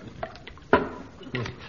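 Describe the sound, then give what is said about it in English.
A drink is poured into a glass to top it up to full again during toasts to the health of Cardinal Puff, in a few short, splashy glugs, the strongest coming partway through, with faint murmuring voices in the background. “Well, now I'll just top you up.”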